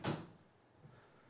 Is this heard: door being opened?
yes